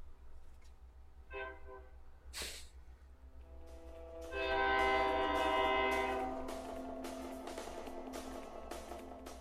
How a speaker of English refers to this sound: Now you hear the train. It's like in your front yard. Yeah, it actually is.